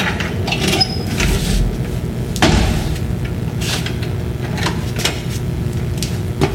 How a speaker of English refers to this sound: One day, he heard strange noises coming from the attic. He went upstairs. Opened the door.